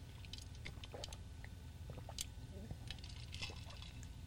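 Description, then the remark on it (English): Iced tea being poured into a glass, a quiet run of scattered splashes, trickles and light clinks over a steady low hum, with no talking. “Let me get some of my iced tea.”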